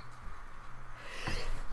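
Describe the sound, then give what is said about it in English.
A single short sneeze bursts out, with a sharp breathy onset and a hissy tail; no one is speaking. “Bless you.”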